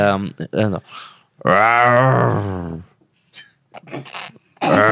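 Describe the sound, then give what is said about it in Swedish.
A person imitates a bear's growl during an animal-sound guessing game, a long, strained, harmonic rumble held for over a second, preceded by a few short vocal bursts and followed by quieter murmuring and speech. “En björn. Ja, björn. Bra.”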